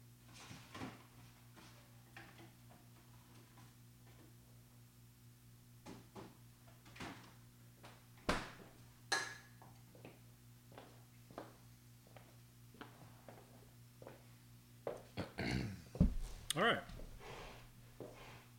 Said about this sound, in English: You can listen to me walk to the fridge.